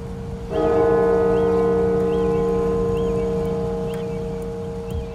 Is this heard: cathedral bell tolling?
yes